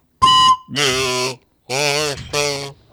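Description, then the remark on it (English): Four loud, buzzy whistle blasts, each lasting about half a second with short gaps between, the later ones slightly wavering in pitch. “It's got a whistle.”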